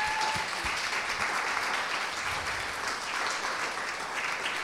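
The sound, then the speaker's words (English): A crowd claps steadily for several seconds, a dense, even wash of many hands with no break and no voices over it. “Give them a clap.”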